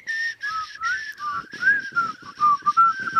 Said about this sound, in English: Can you start whistling again? No, I'm not good at it. Yeah. What are you doing? That's what you picked up? Yeah. It's a makeshift whistle. You're using your tongue, aren't you?